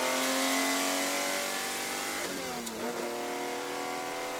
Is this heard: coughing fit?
no